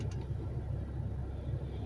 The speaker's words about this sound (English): and let me back this car up. That's what I meant to do earlier, before I was once again rudely interrupted.